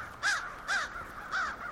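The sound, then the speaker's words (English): Three harsh, raspy crow caws ring out in a steady rhythm, each short and strident, against a faint outdoor background, in Auburn, a small city about 25 miles southwest of Syracuse where tens of thousands of crows gather each winter. “visited Auburn to report on a city inundated with crows, she found residents divided over whether the birds were a blessing or a curse.”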